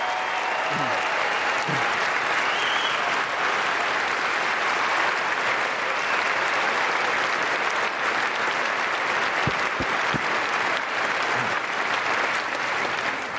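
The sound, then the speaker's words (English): A large crowd applauds standing teachers and educators steadily for the whole stretch, a dense, even wash of clapping that stays loud throughout, with a few brief sharper claps and faint cheers poking through. “Give our educators a round of applause.”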